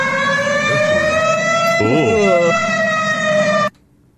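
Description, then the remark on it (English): A national emergency alert alarm tone: a loud, steady, buzzy electronic note held for about three and a half seconds, with a brief wavering blip partway through, then cutting off abruptly. “So these are the emergency alert sounds.”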